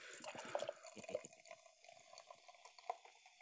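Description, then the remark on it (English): Beer pours from a can into a glass, a steady stream with gurgling glugs and a rising fill tone that fades toward the end. “We should probably get it poured and see what the aroma's like from a glass.”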